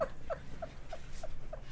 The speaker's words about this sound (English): He's tearing paper up. It's my dog. Get out of here.